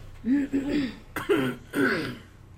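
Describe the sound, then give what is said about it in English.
A few short, throaty coughs, three rough voiced bursts in quick succession with brief pauses between, sounding partly like throat clearing, with no other sounds around them. “I wasn't saying anything, I was just coughing.”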